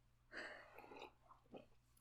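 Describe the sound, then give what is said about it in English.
A noisy slurping sip of an alcoholic drink, followed by a couple of short swallowing and breathy sounds, with no talking. “Oh God, I need alcohol. All right, one sip.”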